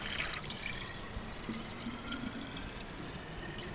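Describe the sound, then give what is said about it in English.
Spring water pours steadily out of a mountainside, a continuous splashing rush with a bright hiss and a faint low gurgle underneath, unchanging in loudness throughout and with no voices. “And here it just pours out of the mountainside.”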